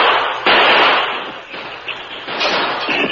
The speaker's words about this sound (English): As bullets whined through the open window, Dude jumped.